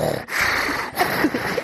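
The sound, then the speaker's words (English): Someone imitates Darth Vader's breathing with a few raspy, hissing breaths in and out, steady and fairly loud, with no words spoken. “When I left local government to start working in the private sector, people used to do the Darth Vader breathing.”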